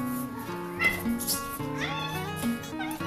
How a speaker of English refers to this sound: This is how my cat pronounces my name.